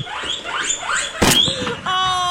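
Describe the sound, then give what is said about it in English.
A guinea pig squeaks in a quick run of high, rising chirps, followed by a sharp burst and a steady, whistling tonal squeal at the end. “Guinea pig.”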